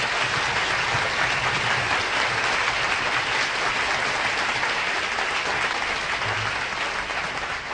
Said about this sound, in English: How about a nice round of applause for the most wonderful organization in the nation, … and his fine orchestra.